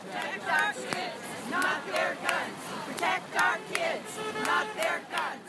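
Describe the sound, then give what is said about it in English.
A protest march crowd of about 300 people, spread across the four corners of the main intersection in North Bend, Washington, chants and cheers in rising, rhythmic waves, many voices shouting together with sharp peaks of yelling over a steady roar. “There's a crowd of about 300 people in attendance at the main intersection in North Bend, spread across the four corners.”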